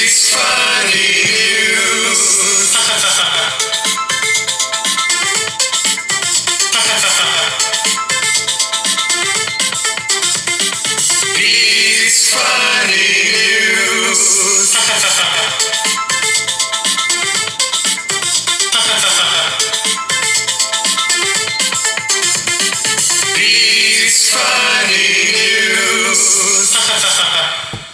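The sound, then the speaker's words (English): A loud, bright theme tune for a show segment plays on its own, its catchy electronic melody looping through the same phrase several times before cutting off sharply at the end. “But it's the only section with a theme tune, so.”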